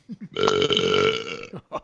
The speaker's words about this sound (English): You have burp enabled.